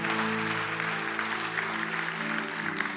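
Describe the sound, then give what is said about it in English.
A church audience claps steadily for marriage for the full three seconds, a dense, unbroken wash of many hands at even loudness, with sustained low musical tones humming beneath the applause. “Come on, clap for marriage, because marriage shouldn't, it means something.”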